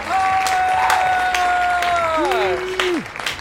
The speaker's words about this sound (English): So, yeah, everyone clap. Give a big clap for